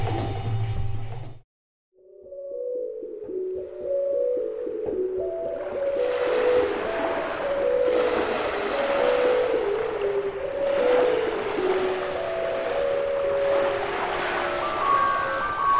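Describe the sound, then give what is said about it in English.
Toads calling at night: overlapping, drawn-out low tonal calls that shift pitch in steps, sounding continuously after a brief pause, with a soft hissing wash building behind them partway through. “Thank you, Anton, for your dreams, amphibian recordings, and music.”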